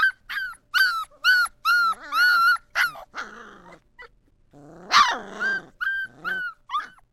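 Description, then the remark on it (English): Young puppies whose eyes have just opened squeak and whimper in a rapid string of high, thin cries, some stretching into wavering little attempts to howl like a wolf. Fairly loud, with brief pauses between bursts and no talking. “They make these cute little squeaks, and sometimes it looks like they're trying to howl like a wolf, which the older dogs in the dog yard do.”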